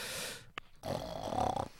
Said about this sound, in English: Snoring sound.